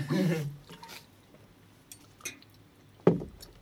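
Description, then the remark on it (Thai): Short bursts of water splashing and trickling as a person pours water in a few quick goes, with quiet gaps between and a louder splash near the end; it is poured water, not urine. “คุณแฟนเรากำลังเทน้ำไปด้วยไม่ใช่เสียงฉี่นะครับ”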